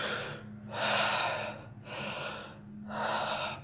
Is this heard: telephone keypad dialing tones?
no